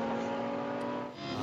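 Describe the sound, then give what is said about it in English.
The number 11 GRT Lamborghini race car, driven by Stein Shorthorse, leaves the pit lane; its engine drones loudly with a steady, high-pitched tone, dipping briefly before surging again as it revs up, continuous with no voices. “And as I say it, he leaves the pit lane in the car.”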